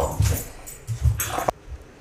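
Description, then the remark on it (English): A female dog lets out a short, angry outburst of growls and whimpers after farting, two or three rough bursts in quick succession that cut off abruptly, with no one talking. “Okay, so we briefly paused the podcast because our dog just had a little outburst.”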